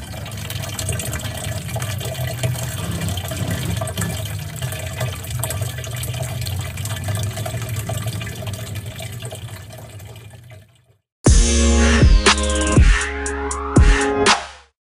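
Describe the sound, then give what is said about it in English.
Water drops patter in a dense, steady stream for about ten seconds, then stop. After a brief silence, a louder burst of sweeping, electronic-sounding tones plays to the end. No one speaks. “And for your sake, you might now listen to a bit of water drops with like hexons in the background.”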